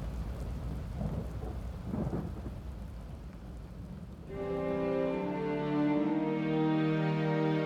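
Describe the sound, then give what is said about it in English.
Rumbling thunder crashes through a storm with lightning striking, over steady rain-like hiss, swelling loudly in the first seconds before giving way to sustained, droning tones that fill the second half. “thunder crashes and more lightning strikes around him.”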